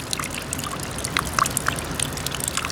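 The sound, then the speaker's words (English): On a rainy day, rainwater trickles and drips steadily off the roof of a snack bar onto wet snow below, slowly melting the snow and creating puddles, with irregular bright droplet splats scattered over a soft constant dribble. “And since it's raining today, you can also hear the water rolling off the roof and hitting the snow on the ground, slowly melting away at the snow and creating puddles.”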